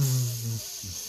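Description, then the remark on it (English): A voice makes a steady sizzling hiss for about a second, a bright airy hiss with a low hummed tone underneath that fades briefly and returns. “I can sizzle as much as I want without losing my breath because 420 ain't around.”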